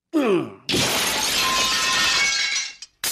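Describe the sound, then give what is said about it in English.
A mirror is smashed with a drinking glass: a brief glassy clink, then a loud, bright shattering crash with tinkling shards that rings on for about two seconds before cutting off. “But you busted it.”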